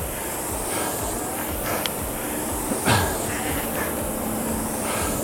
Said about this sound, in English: Here comes a helicopter to rescue me.